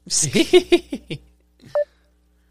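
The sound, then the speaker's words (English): A call's outgoing dial tone: two short electronic beeps with a pause between them, heard clearly after a brief burst of someone's voice at the start. “Facebook has, like, the weirdest little dial tone”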